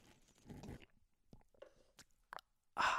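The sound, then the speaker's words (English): Mouth sounds of someone sipping an Americano coffee with collagen in it: a soft slurp, a few small wet clicks and swallows, then a louder airy slurp at the end. No one speaks. “Let me take a sip of coffee real quick.”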